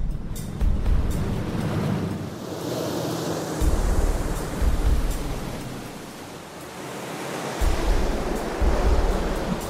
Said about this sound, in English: We've sealed up the cockpit area. We've taped it up so it's on there good. It's tight. And we've left the plug open. And we're going to have the water come over the kayak and see just how much water goes into the plug.